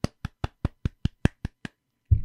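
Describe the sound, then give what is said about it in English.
One person claps their hands nine times in a quick, steady rhythm. The sharp, crisp claps soften slightly toward the end, followed by a brief pause and a muffled low rumble. “I clapped.”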